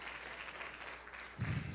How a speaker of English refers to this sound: Do you understand? Give him a hand clap if you understand what I'm saying.